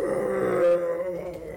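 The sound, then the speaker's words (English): A monster, a scaled creature with chitinous hide, roars out in pain after being struck with a holy symbol of Jergal: a drawn-out, strained, groaning growl that swells in the middle and then trails off, lasting under two seconds with no talking. “This thing like roars out in pain.”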